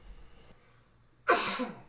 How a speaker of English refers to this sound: Coughing my lungs out here.